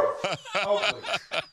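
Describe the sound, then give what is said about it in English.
A dog barks several times in quick succession, fairly loud, each bark a short sharp burst with brief gaps between them. “Oakley's been waiting to talk about these Packers for an hour and 8 minutes here and said, that's enough.”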